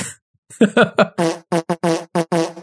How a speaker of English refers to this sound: And then also, if I'm not mistaken, that was the same fart sound effect that you were using. The same... Yes. That's this one. Now, a little bit more compressed. Now, whose fart was that? Was that yours?